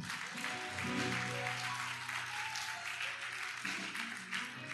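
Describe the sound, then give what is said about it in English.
A crowd applauds steadily for the whole stretch, a dense, crackling wash of many hands clapping, with a low sustained musical tone humming underneath and no talking. “I thought you were going to clap.”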